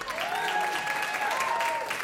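An audience claps steadily for about two seconds, a dense, even wash of many hands, with a thin sustained tone gliding faintly above the applause.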